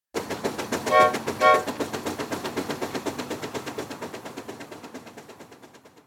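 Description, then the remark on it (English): A steam train pulls away: two short whistle blasts sound over a steady, rapid chugging rhythm that gradually fades over several seconds. No voices are heard. “So let's catch a train and head back north to hear how this all plays out for Mr. Lincoln. All aboard.”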